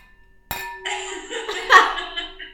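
A wine glass is tapped once in a toast, giving a sharp clink that rings on with a sustained bright tone, with some soft rustling or murmuring underneath.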